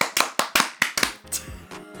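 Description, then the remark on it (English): A short burst of hand claps after a count of one, two, three, meant to be clapped at the same time: about six sharp slaps in quick, slightly uneven succession, fairly loud, followed by a moment of softer rustling and shuffling. “We were meant to clap at the same time.”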